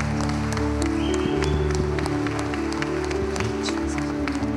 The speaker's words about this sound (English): Come on and give my hand clap of praise in this house today.